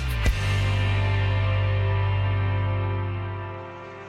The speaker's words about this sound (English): Mosquitoes. Annoying little things, but they can be far more than annoying. They can be deadly.